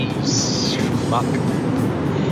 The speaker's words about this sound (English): Hear that? You hear those rumbles? That background noise? I'm gonna hit the rumble strips.